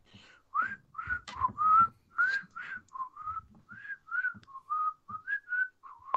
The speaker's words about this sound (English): I don't know if you can hear that. That's me whistling. It's in my head forever.